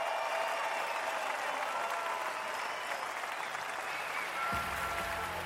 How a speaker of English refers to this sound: One more round of applause for the only John Isner.